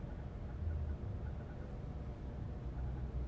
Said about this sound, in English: I really hope it's a car in front of me.